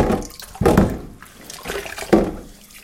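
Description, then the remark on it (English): Scrubbing of dishes with a scourer pad in water: a few irregular, rough strokes swish and splash in a sink, with no talking. “It's pretty effective as a scourer, and let's admit it, it's a bit weird.”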